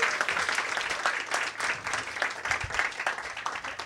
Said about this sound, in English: All right. Give a one more round of applause